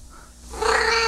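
A cat lets out a loud, drawn-out yowl very close to the microphone, rising sharply after a quieter start and holding strong to the end, with no one speaking.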